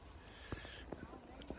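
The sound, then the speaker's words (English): A flock of sheep raised by Bedouin herders trots past, with a few sharp hoof clicks scattered irregularly over a soft, steady background murmur. The sounds are faint. “Probably have a Bedouin friend here that has his sheep coming.”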